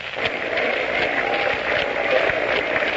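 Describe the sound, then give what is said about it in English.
Scattered, uneven, half-hearted hand clapping from a baseball game crowd, steady but unenthusiastic, with a broad wash of crowd noise underneath and no clear voices standing out. “The crowd is beginning a sort of a half-hearted hand clapping.”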